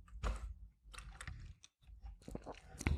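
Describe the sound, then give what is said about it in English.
Mouth sounds of someone sipping water: several soft wet slurps and clicks in an uneven rhythm, with no talking. “And sorry, I had to take a sip of water.”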